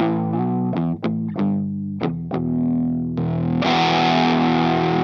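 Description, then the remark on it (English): A growly, overdriven semi-hollow electric guitar with two humbuckers, both tone knobs turned almost fully down, played through a Chase Bliss Benson Preamp Mark II pedal, plays a handful of sharply picked notes and chords, then lets a thick, distorted chord ring out. Fairly loud, with no voices. “That's kind of growly. Shout out Benson and Chase Bliss. Yeah, this is a preamp Mark II that I have employed for some more tone shaping.”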